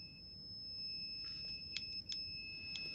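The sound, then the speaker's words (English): A power supply alarm gives three short, sharp, high-pitched beeps at uneven intervals over a steady electronic whine and low background hum. No one speaks. “Is that your smoke alarm?”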